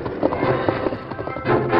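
Horse hooves clip-clop in a steady, unhurried rhythm, a string of fairly loud hoofbeats over a busy, noisy background, with no one speaking.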